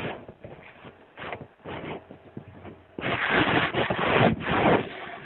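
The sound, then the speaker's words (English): Paper being folded and creased, with soft crinkling rustles at first, then louder, denser scraping bursts in the second half. No voices. “Wow, who's somebody folding paper?”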